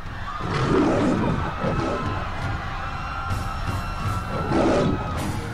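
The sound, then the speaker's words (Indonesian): A raging lion roars angrily in a forest, loud, with two big surging growls rising out of a dense, rumbling wash of noise that never lets up. “Di tengah perjalanan, tiba-tiba mereka dihadang oleh seekor singa yang sedang mengamuk.”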